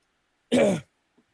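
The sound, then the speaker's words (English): A single raspy cough, short and forceful, on its own against silence, followed by a faint small sound a moment later. “That cough hurt.”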